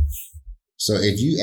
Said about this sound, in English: So if I may ask, what are you doing with the heartbeat?